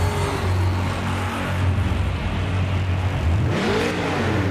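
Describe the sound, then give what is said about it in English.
A car engine runs loud, holding a steady low drone before revving up sharply near the end, the pitch climbing as it accelerates. “Start your engine.”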